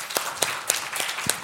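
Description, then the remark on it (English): A crowd applauding both team captains, a steady wash of clapping with a few sharp, louder claps standing out at a regular pace, with no voices. “Give both captains a big round of applause, if you would, please.”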